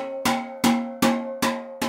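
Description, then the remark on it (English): A steel drum note struck five times at an even, unhurried pace in a steel drum making workshop, while being checked with a sensitive instrument tuner so every note is in perfect pitch. Each hit is a bright metallic ring at the same mid pitch that hangs briefly before the next. No voices. “Keith's using his now to make sure all the notes on this drum are in perfect pitch.”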